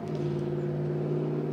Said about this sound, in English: Do you know how mad he is that when he started this report, there was a car alarm going off, but then at the end of it, someone's revving their goddamn motorcycle?